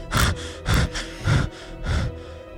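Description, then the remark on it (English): Heavy, ragged panting from a person who has fallen to the ground after being spun around: four breathy gasps in and out at a steady rhythm, each a loud rush of air with no speech. “I spun faster, faster, and faster, near out of control before they released me and I fell to the ground, panting for air.”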